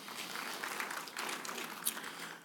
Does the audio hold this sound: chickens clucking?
no